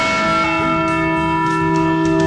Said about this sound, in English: The Liberty Bell, ladies and gentlemen. Think about it. Think about it. I don't know why we're thinking about it. It's a bell. It's a... rung to symbolize liberty.